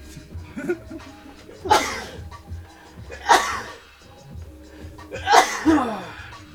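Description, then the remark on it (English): Three loud sneezes burst out one after another, roughly two seconds apart, each a sharp explosive blast with quieter murmuring voices in the gaps between them. “Bless you, man. Bless you again.”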